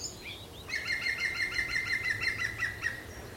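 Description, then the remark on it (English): A green woodpecker yaffles: a rapid, evenly spaced run of about a dozen loud, ringing, laugh-like notes at a steady mid-high pitch, lasting a couple of seconds, with no voices. “Green woodpecker yaffling.”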